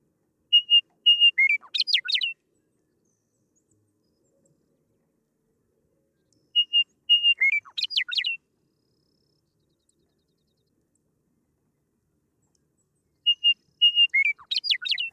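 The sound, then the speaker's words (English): A western meadowlark sings three times, each phrase opening with clear whistled notes before tumbling into a quick, bubbling warble, separated by long silent pauses. The bird sounds loud, with no talking. “One of my favorite tracks at the site is your recording of a Western meadowlark. This is one of the most beautiful bird songs I know.”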